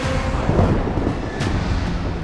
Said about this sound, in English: Dark storm clouds rumbled overhead, blocking any moon that might have lit his way.